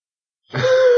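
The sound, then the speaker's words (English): After a half-second of silence, a voice imitates a gurgle with a strained, throaty noise that holds a steady mid pitch and stays fairly loud until the end. “You hear a gurgle.”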